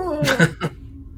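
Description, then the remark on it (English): During a tabletop role-playing game, a person vocally imitates a stretching cat's big yawn: a drawn-out, gliding voiced tone broken by three breathy, growly bursts, lasting just over a second. “There's that big old yawn that cats do.”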